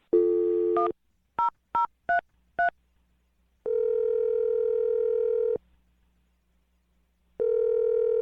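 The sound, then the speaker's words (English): A steady dial tone gives way to five quick keypad beeps as a phone number is dialed for an Awkward Tuesday phone call, followed by two long, even ringing tones separated by a pause of silence. No one speaks. “Well, I'm going to dial the phone number and you can make your Awkward Tuesday phone call, okay?”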